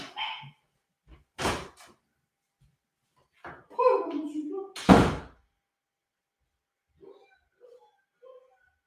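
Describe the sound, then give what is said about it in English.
A door being opened, heard as two sharp clunks a few seconds apart, with a brief dog yelp in between and faint, scattered sounds trailing off afterward. “I gotta go open the door.”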